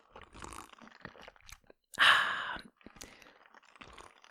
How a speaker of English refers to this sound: And maybe you heard me glug, glug, glug some water. And I, just to sort of simulate what that's like.